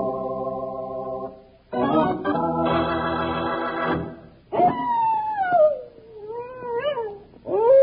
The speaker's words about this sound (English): He's either got a stomach ache or he's hungry. If he'd come on down to the bunkhouse, I'd fix him right up with a big bowl of Rice Krispies. Hey, coyotes make many different kinds of sounds out here.